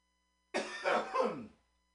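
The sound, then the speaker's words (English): A fairly loud cough, a rough burst followed by a second heave, lasting about a second and then fading into silence. No one speaks. “That's rude of me to cough right at you guys.”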